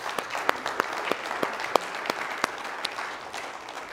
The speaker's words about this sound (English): Come on, would you please give the Lord another hand clap with me today?